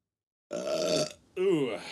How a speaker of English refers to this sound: I burped. You hear that? I heard that.